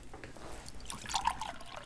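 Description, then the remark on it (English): Water is poured into a glass, a short splashing trickle that grows brighter and busier midway through before tapering off, with no voices. “Would you like something to drink? Have some water.”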